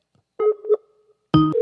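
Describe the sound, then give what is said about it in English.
Electronic telephone keypad tones sound as two short bursts of steady beeping, the second louder and richer, dialing a phone call to Jim Hoft of the Gateway Pundit. Clear, with no voices in between. “I'm going to call Jim. Pick up the phone and call him.”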